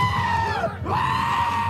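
Loud bleating of giant goats fills the moment, a sustained wavering cry that dips briefly, then picks back up into another drawn-out bleat. No one speaks.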